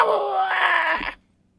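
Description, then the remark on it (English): A voice imitates a harpy's screech as the harpy descends to attack: one loud, strained, high-pitched cry held for about a second with harsh, buzzy overtones, then cutting off abruptly into silence. “This harpy descends upon you, just screeching.”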